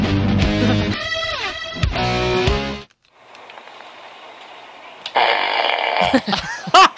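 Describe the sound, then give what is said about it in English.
A loud, buzzy electronic fart sound blares from a remote fart machine, a novelty gag gift, sputtering for a few seconds, then a brief hissy lull before another raspy, wobbling fart burst erupts. “I got it at like a gag gift store. Remote fart machine.”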